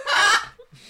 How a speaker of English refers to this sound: I knew there was gonna be another bird noise, so I just was like, I'm not gonna bother getting onto a roll, because as soon as I do, I'll probably get interrupted by a bird noise.